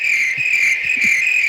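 Loud, constant chirping of crickets forms a dense, high-pitched trill that fills the whole moment without pause, steady and close, with a few faint low thumps underneath.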